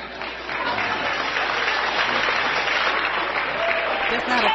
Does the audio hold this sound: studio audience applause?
yes